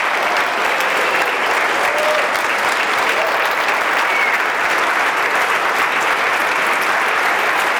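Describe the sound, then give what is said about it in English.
A large audience claps loudly and steadily for the full stretch, a dense, continuous roar of many hands with no pauses and no voices rising above it, applauding the team that put on the event. “Like literally, everybody stand up, turn around and give them a round of applause.”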